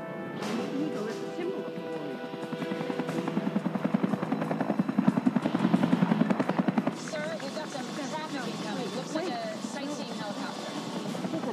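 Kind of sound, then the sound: vehicle, helicopter flying overhead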